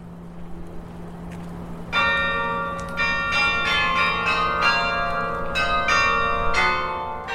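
Tower bells ring out loudly after a low background hum, with several bright, overlapping strikes continuing in an irregular peal that keeps sounding and ringing on to the end.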